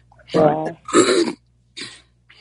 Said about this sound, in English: Just got a sudden cough. Trying about. To breathe there. I think it was. I keep moving the microphone away when I have to cough, but I don't think it helps.